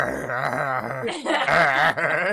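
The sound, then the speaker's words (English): A person vocally imitates a dog growling and tugging while chewing on something, a loud, continuous rumbling snarl with rough rising and falling bursts lasting a couple of seconds, with no other talk. “Because I'm immediately imagining a dog chewing on it and then you go into open the fridge and it being like.”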